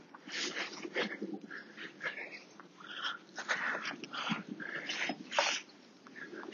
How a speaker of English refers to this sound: I'm going to get Wolfie on the lead because there's a lot of dogs coming here